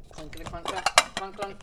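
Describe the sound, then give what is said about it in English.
Three ceramic pasta or soup dishes from a set clink and clatter as they are stacked and handled, a quick run of bright knocks and scrapes with a sharper clack near the middle, while a voice murmurs faintly underneath. “Grabbing the dishes here.”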